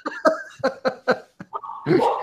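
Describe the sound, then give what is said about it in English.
A female pet dog in the background barks several times in quick, uneven succession, then lets out a longer, drawn-out bark or whine, clear with no talking over it. “Is that your dog in the background? It is my dog in the back.”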